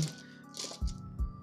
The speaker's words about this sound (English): Oh, hey, you finally got your dice. I poured my dice out because I'm going to need all these for damage.